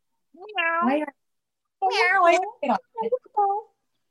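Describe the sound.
A person mimics a cat, with two drawn-out, wavering meows followed by a few shorter chirpy mews, fairly loud with brief pauses between.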